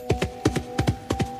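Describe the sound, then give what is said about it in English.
Hooves of two sorrel mares pulling an old cart down a road trot in a steady, uneven clip-clop, with sharp knocks falling in quick pairs about every third of a second over a faint constant hum. No one speaks. “Magpie hears the echo of trotting hooves”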